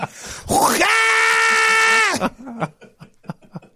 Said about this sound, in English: Coming up next, sounds you'll never want to hear again. That's a guy who starts to hawk a loogie, but then is stabbed in the leg.